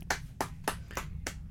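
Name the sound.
hand clapping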